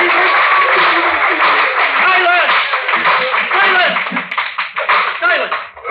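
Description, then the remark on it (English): Loud, sustained applause from spectators in a courtroom, dense and steady with a murmur of voices and scattered laughter mixed in, thinning slightly toward the end. “Sergeant at Arms will bring forward immediately the parties that applauded.”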